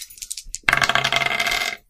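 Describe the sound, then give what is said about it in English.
A few light clicks of dice being shaken, then a bright clatter as two dice tumble and rattle across a hard surface for about a second before settling. “I feel compelled to answer it. Roll two dice.”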